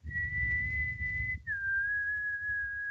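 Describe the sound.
A person whistles a short two-note tune imitating the villain Negan's signature whistle: a long, steady high note, a brief break, then a slightly lower held note, clear over a low background rumble.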